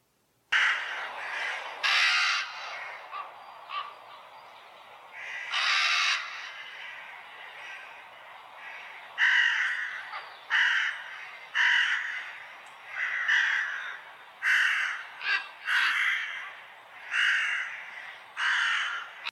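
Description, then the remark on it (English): Ravens call repeatedly in harsh, throaty croaks and caws, some overlapping in irregular bursts across about twenty seconds, loud, with no voices present. “Now here's a sound clip of ravens to play, and let's see what kind of effect it has on you now.”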